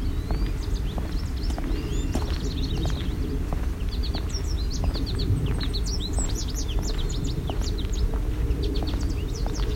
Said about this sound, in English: Savannah sparrow.